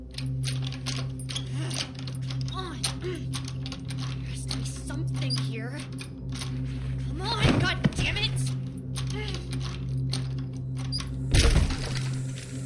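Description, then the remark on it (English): Wood splinters and cracks in two sharp bursts a few seconds apart as a basement door is forced open, following scattered knocks and scrapes, all over a steady low mechanical hum. “Finally, there's the sound of wood breaking, and it's like someone has broken the seal of an airlock in space.”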